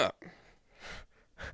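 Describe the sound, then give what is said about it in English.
A few short, harsh coughs in an uneven sequence, each a brief rough burst separated by pauses, with the third one longer and the last one loud and abrupt. No speech. “Weirdly, oddly specific cough.”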